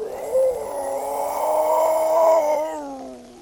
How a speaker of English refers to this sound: You hear this extremely loud growl.